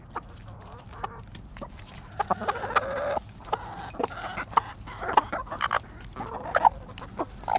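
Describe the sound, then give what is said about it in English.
Several chickens cluck and chatter in an irregular, busy stream of short calls, with scattered soft knocks and scratches, as the hens are being fed by their owner. No one speaks. “You might be asking yourself, why is a young white woman from Minnesota, one who's feeding her chickens, exploring the international student experience?”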